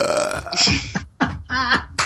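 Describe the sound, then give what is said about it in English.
A person vocally imitates someone puking on donuts and slurping them back: a long, loud gurgling retch, then three shorter wet, throaty bursts in quick succession, with no ordinary speech. “And the donut thing, you know, when he pukes on the donuts and slurps them back.”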